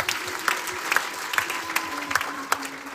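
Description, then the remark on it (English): An audience clapping together, a dense, steady patter of many hands with a few sharper claps standing out, sustained at moderate loudness throughout. “But they clap for yourselves.”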